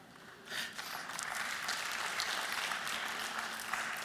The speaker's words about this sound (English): And today our applause is yours, Jesus, because you worked your way up to the bottom.